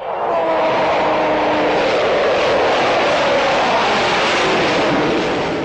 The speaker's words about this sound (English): There's nothing like a fast jet display to blow away that winter chill.